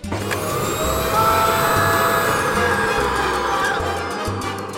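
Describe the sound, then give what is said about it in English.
A vacuum hair-growing helmet machine, meant to draw blood to dormant hair roots, runs with a loud, steady motor drone and thin, high whining tones, continuous for the whole stretch, with no one talking. “Science's newest invention, the vacuum helmet, draws rich, nourishing blood to your dormant hair roots with the very first treatment.”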